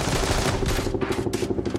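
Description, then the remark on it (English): Rapid bursts of gunfire rattle continuously from the side of a car, with bullets ripping through the car's metal door and roof in a dense, loud barrage. No one speaks. “But before we made it onto the bridge, we were hit from the side. Bullets ripped through the door and the roof of the car, somehow missing us.”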